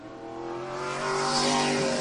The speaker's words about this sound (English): Next out on track, the number 19 machine from White Rock. The car is out of Agassiz.